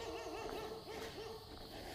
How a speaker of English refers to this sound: Apparently the dog agrees.